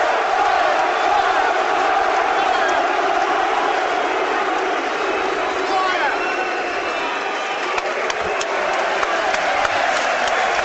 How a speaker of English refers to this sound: And the banner wavers take their applause and now retreat away to our left.